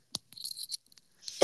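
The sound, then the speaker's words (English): A sharp cough bursts out, followed by some scratchy throat noises and another loud, forceful cough at the end. “Like, obviously, like, my God, I feel like I'm about to cough, guys. Hold up, I am.”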